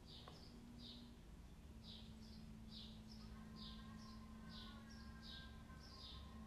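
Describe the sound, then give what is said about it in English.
Birds chirp repeatedly outdoors on a Saturday morning in short, bright bursts at a steady rhythm, over a constant low hum of background noise with a faint tonal drone. “The birds are chirping.”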